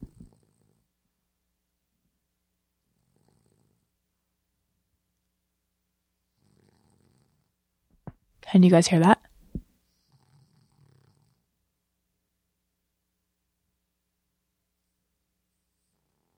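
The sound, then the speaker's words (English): A sleeping female dog lets out one short, rough snorting snore while dreaming, a sudden burst amid quiet, with a few faint soft stirrings around it and a brief murmured question. “I mean, she's having a wild dream.”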